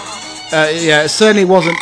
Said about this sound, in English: A little bit of a pig too. Certainly a little bit of a pig grunting going on there.